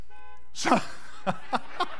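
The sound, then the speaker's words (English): A car horn honks four times from a car parked in a wheelchair parking space: one longer blast followed by three short, evenly spaced toots, moderately loud with a bright, brassy tone, and no one talking over it. “I'm starting to feel some bitterness towards that car right now.”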